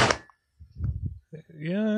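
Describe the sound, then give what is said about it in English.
A heavy 649-page book on crocodilians lands with one sharp, flat slap as a test of its weight, followed by a few soft low thuds and rustles before someone starts speaking. “You know, it's not a very good test because it always just sounds like a slap.”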